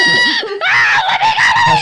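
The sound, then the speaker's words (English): A person screaming in character lets out a loud, performed scream, a strained and wavering shriek with a brief catch for breath partway through before it surges on again. “Just screaming bloody fucking mort.”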